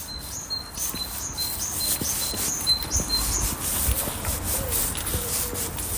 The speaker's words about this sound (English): So that's the Great Tit in Marino, Niall Hatch. I always like to call that the bicycle pump song, because that's what it reminds me of, the squeaky bicycle pump.